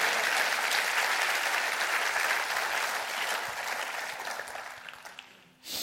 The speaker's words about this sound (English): Clap your hands and say amen to that.